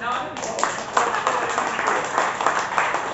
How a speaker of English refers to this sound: Keep that applause going.